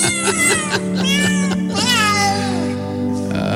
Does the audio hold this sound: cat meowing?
yes